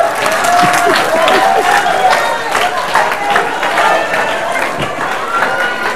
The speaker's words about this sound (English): Clap your hands.